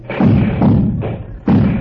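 Firecrackers go off in a quick series of four loud, booming blasts, each one rumbling into the next with no pause, with no voices.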